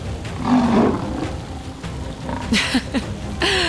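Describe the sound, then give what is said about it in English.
A lion's low, rumbling growl swells, followed by a few shorter snarling bursts over a steady hiss of rain-like background noise. “My fingers curled around the whip, ready to disarm and take Lightfoot hostage, until I heard the low growl.”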